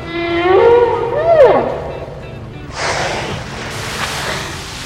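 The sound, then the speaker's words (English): A mother humpback whale's drawn-out moaning calls swoop up and then down over the first two seconds, then give way to a rushing, watery wash of noise, at a breeding ground for whale calves. No one speaks. “You must be the real Mr. Whale. That's no mister. Trust me, I speak whalish. She's right. That's a mama whale.”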